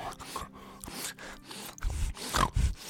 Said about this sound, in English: He starts sniffling and snorting and sneezing, and for some reason he's licking my face.